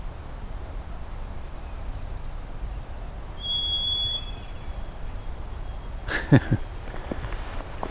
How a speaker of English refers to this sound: A little bit of an abbreviated song there. Ovenbird.